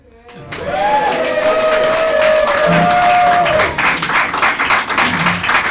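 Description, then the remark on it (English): A crowd bursts into loud, sustained applause with cheering and whooping voices rising above the dense clapping, continuing steadily for several seconds, as two men in matching suits run onto a stage to the microphones. “The audience, that's you guys, begin to cheer and applaud.”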